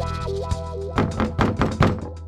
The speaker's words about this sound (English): I knocked on the door and I announced my identity and authority.